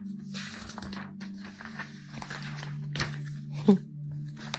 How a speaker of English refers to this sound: Just turning the page.